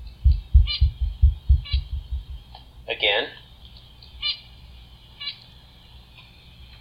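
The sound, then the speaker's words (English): A short, high songbird syllable repeats about once a second, faint and thin, over low rhythmic thumping at the start; partway through, a voice briefly speaks. The syllable is sung first by the bird after drinking juice, then by the bird after drinking alcohol. “First the syllable sung while the bird had juice, followed by the syllable sung while the bird had alcohol.”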